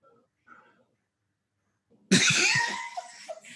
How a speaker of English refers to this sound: Dude, you just coughed. You might have the Rona, dude.